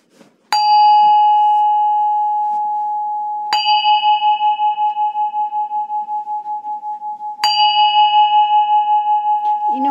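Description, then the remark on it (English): A singing bell is struck three times at steady intervals, each strike giving a bright metallic ding that rings out into a long, sustained shimmering tone with a gentle wavering pulse. “So I have a singing bowl and a singing bell that I'm going to use to raise the vibrations before I begin.”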